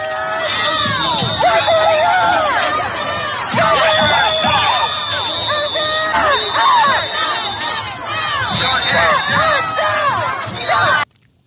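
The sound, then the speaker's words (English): A large crowd of pro-Palestinian protesters trying to knock a fence down shouts and yells continuously, many raised voices overlapping in loud, chaotic bursts with a sustained high tone running beneath, before cutting off abruptly at the end. “They trying to knock the fence down.”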